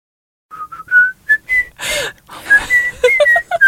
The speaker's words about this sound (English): Don't laugh at me whistling in a jaunty fashion. I wish I could whistle as well.